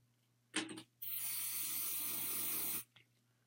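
Hairspray hisses from an aerosol can onto a note card pressed against an arm to make a temporary tattoo: a short burst, a brief pause, then a steady spray lasting almost two seconds, fairly loud, with no talking.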